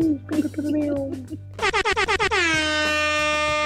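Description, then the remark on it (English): A loud air horn sound effect fires a quick stuttering burst of about eight short blasts, then holds one long sustained blare to the end, following a brief moment of voices and background noise. “Lots of air horn. We love our air horn over here.”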